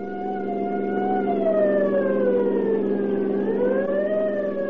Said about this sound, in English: The scream of a siren knifed through the din of a driving rainstorm as Deputy Sheriff Douglas Webb and Grover Mull sped through the gathering night.